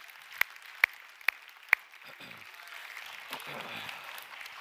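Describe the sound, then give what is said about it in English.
An audience clapping in response to a speaker's call to clap: four sharp, evenly spaced hand claps ring out loudly, followed by a softer, continuous wash of crowd clapping and murmuring noise. “Somebody clap your hands like they're falling off.”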